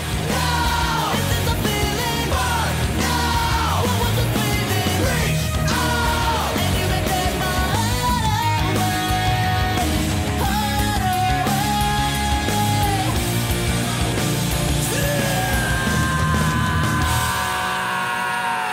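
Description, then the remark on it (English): Harsh, screamed vocals delivered in a singing style over a loud, dense band, alternating with long sustained high notes that waver with vibrato; the music stays full and constant throughout. “I mean, the balance between the screaming and then jumping to very, very high, long notes is not easy.”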